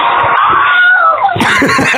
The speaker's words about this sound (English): What the hell was that? They did the Wilhelm scream.